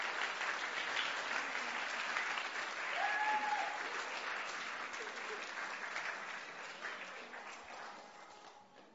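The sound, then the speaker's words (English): Sustained applause from an audience fills the whole stretch, a dense steady clatter of many hands clapping that gradually fades toward the end, with a faint voice briefly audible partway through. “Okay, let's give them all a round of applause again.”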